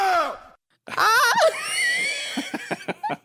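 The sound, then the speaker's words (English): An artificial, voice-like vowel sound mimicking the mummy Nessie Amun's voice, made by researchers in England who recreated his mouth and vocal cords with a 3D printer: a short groaning tone, then a louder wavering moan with sliding pitch, ending in several breathy, sputtering pulses. “Scientists were able to mimic Nessie Amun's voice by recreating his mouth and vocal cords with a 3D printer. It allowed them to produce a single sound.”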